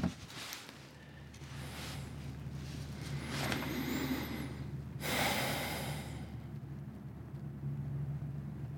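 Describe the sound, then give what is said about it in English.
A logging truck rumbles along a road half a mile away in absolutely still air at the quietest time of day, a low steady engine drone with faint whooshing swells, while a small bird chirps briefly high above. “That's a logging truck. The road is a half mile away.”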